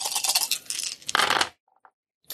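A pool of eight dice rattles and clatters across a hard surface for over a second, settles with a couple of small ticks, then one last brief clack.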